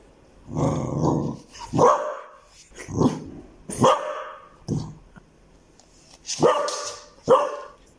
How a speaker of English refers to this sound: It doesn't sound different. Dogs don't have an international language. When they bark, it just sounds like a bark. It's not Japanese or English or German.